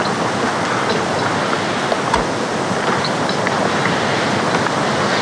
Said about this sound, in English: It wasn't much more than a trickle when we set off. Now look at it. It's turning into a torrent